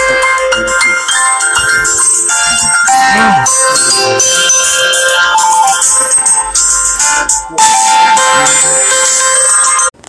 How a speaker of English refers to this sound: Sorry about the interruption, people. There was a phone call that came through. I am so sorry for the interruption.